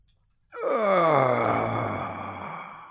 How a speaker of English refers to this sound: Yeah, that was a nice, satisfying yawn.